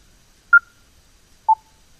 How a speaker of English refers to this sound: And the speech guide announces that, as well as the setting that you're selecting. I'll let you hear that and the beep that you get with the corresponding changes as you toggle this button on and off.